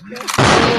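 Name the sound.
gunshot sound effect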